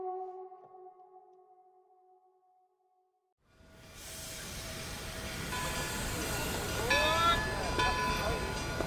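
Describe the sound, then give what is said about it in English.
A steady two-note tone fades to silence, then a train rumbles in, its noise building louder with metallic brake squeals near the end as it pulls into a station in Georgia on a wintry January day in 1924. “It's 1924, a wintry January day in Georgia, as George and Imogene Remus step off the train”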